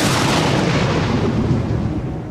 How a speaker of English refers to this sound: Lightning flashes across the sky, followed by the crashing of thunder.